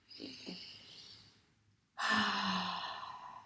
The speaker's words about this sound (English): But okay, let's take a breath. Let's all take a breath in.